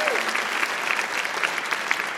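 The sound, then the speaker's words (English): Steady applause from an audience, a dense crackle of many hands clapping at an even level throughout, with no voices standing out. “Can we applaud that?”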